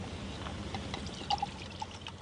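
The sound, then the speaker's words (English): Fiji Water pours steadily into a glass for a couple of seconds at the Grand Pacific Hotel, a bubbling gurgle with small clinks and rising tones as the glass fills, over quiet room noise. “Can I get you a tea or coffee or a drink? Just give me a Fiji water.”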